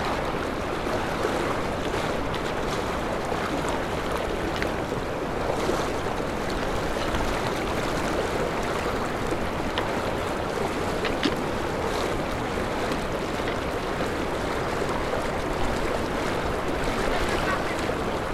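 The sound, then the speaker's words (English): Strong creek current rushes steadily and loudly, a dense unbroken roar of water with faint splashes and sloshing as someone wades across the creek, going around two big rocks. No one speaks. “Okay, the current here is quite strong, but it's not too bad.”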